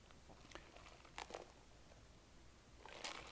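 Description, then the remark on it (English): A couple of quiet slurping sips of coffee, short breathy bursts with faint crinkly noise between them and no talking. “That was a sip of my coffee.”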